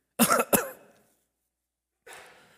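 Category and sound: human body sound, hacking cough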